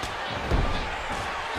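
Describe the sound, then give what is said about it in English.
A single heavy, booming thud as wrestler Owen Hart is dropped onto the ring mat with a suplex, rising out of a steady roar of crowd noise that continues throughout. “Picks up Owen Hart and drops him with a suplex.”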